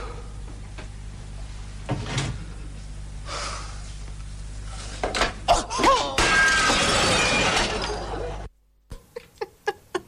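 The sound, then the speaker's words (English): Objects being smashed by the Monty Python team in a film, with loud crashes and shattering building to a sustained burst of breaking debris; the last thing smashed is a family heirloom clock. Then a sudden cut to a handful of sharp, evenly spaced knocks. “That was the Monty Python team, and the last thing that got smashed was the family heirloom clock.”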